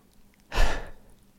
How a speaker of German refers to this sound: Und ein weiterer konkreter Tipp, der immer wieder auftaucht, ist das Schnaufen. Oder zuerst einmal gut durchschnaufen.